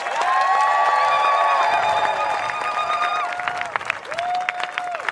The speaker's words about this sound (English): Please give it up for the Ohlone Prayer, everybody.